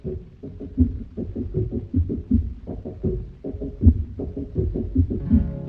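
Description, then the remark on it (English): A clip-clop beat played on a pipe organ as the opening sound of a song: low, reedy notes pulse in a steady alternating rhythm, about two per second, with no voices over it. “They wanted something else, but that's what they had, so they did that beat with a pipe organ.”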